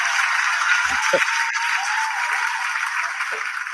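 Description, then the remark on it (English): A hand clap sound effect plays as a steady, dense wash of clapping that sounds like applause, holding at an even, fairly loud level for a few seconds with no talking over it. “There's my hand clap.”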